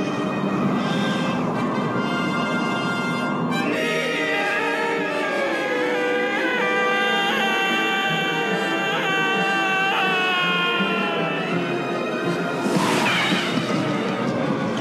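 The Emperor Palpatine scream from Return of the Jedi, reused as a film sound effect: a long, agonized villain's scream, loud and wavering, its pitch sliding up and down in drawn-out wails that fill the whole stretch without any talking.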